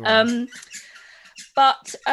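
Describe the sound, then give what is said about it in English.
A squeaky ball toy squeals in a few loud, high-pitched bursts with breathy, scuffling noise between them, as dogs play with it or with each other, growling. “They're either playing with the toy that is a noisy one or with each other and they're growling around like that.”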